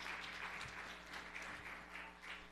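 A sustained round of applause from a crowd, dense and steady clapping with a rushing hiss throughout, holding at an even loudness for a few seconds with no voices on top.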